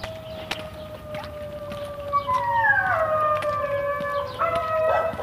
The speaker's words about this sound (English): That's a dog singing along with the sirens.